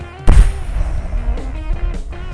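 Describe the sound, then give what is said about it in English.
A person imitates the 1980 eruption of Mount St. Helens into a microphone: a sudden, loud boom near the start trails off into a long, rough rumble. No talking accompanies it. “It's the eruption of Mount St. Helens.”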